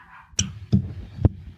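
A dog gives three short, sharp barks at uneven intervals, with no one talking over them.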